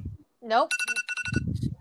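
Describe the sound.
A timer alarm goes off in quick, bright electronic beep bursts, pulsing rapidly for about a second. A voice is heard just before it, and talking continues as the beeping fades.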